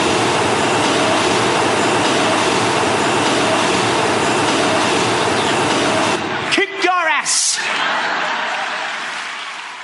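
An IRT number 7 line subway train roars past a home that shares a wall with the line, in a loud, steady rumble with a constant humming tone, then cuts off abruptly, leaving a few brief wheel squeals and a quieter fading rush.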